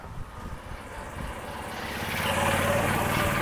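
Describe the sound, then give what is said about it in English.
A golf cart driven by a woman flies past, its motor a steady low hum with a thin whine above it, swelling louder over a few seconds. No one speaks. “woman flying past on a golf cart, that's great.”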